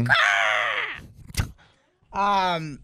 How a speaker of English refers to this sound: I don't know what that was. If I had a shotgun, I'd shoot that sick bird now.